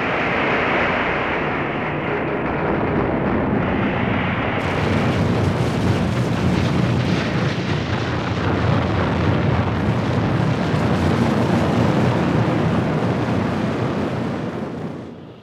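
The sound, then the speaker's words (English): A tractor flips over, crushing its cab, and explodes: a loud, dense roar of fire and blast that grows brighter and harsher about a third of the way in, then rumbles steadily until it cuts off. “Anchored up to the hilt of the bailing spike, the agricultural vehicle comes to a juggling halt and flips over, crushing the cab and exploding with sheer poetic justice and much conflagration.”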